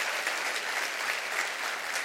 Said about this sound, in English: I wonder today if we could just, with our own hand clap in just a moment, say, Lord, I want you in my house today. Come on, clap your hands all over the house. I want you in my house today.